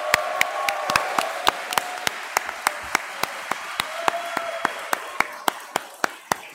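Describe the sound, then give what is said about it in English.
An audience applauds a researcher who is present for her work, with sharp, evenly spaced claps keeping a steady quick rhythm over a softer continuous wash of clapping, moderately loud throughout, with no talking. “I just want to give a round of applause for all the work she's put into the show so far.”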